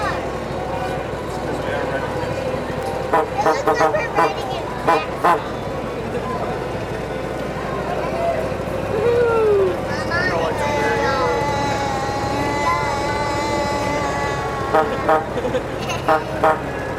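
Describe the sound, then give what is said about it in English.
Steady rumble of an open vehicle rolling along, with a few horn toots sounding over the noise and voices murmuring in the background. “It's like we're just riding in an open car.”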